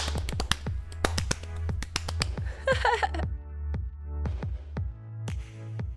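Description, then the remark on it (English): Sharp, crisp hand claps crackle in a quick, uneven patter for several seconds, like a small group applauding, over a steady low hum, with no voices; an applause sound effect. “Cue applause.”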